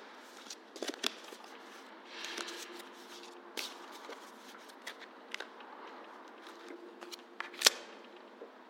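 A deck of tarot cards being shuffled by hand, a steady papery riffling with scattered sharp snaps and taps, fairly quiet, with one louder crisp flick near the end. No voices.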